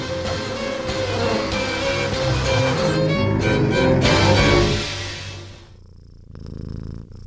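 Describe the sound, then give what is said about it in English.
A cat purrs loudly and steadily up close, a continuous rumbling drone that holds for about five seconds before fading to a softer, quieter purr at the end. “So nice to have a lab cat again.”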